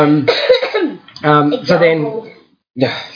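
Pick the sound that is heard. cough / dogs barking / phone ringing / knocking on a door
cough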